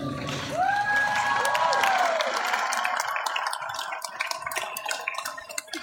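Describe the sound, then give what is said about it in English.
A crowd of thousands bursts into loud, dense applause with cheering and a couple of rising whoops early on, the clapping continuing steadily and thinning slightly toward the end. “Applaud yourself.”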